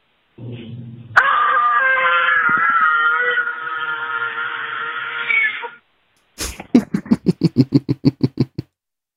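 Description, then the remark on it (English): On a caller's voicemail, a person lets out a long, loud, sustained scream lasting several seconds, followed after a short pause by a rapid series of sharp, rhythmic vocal bursts, like a second burst of shrieks. “Well, good scream.”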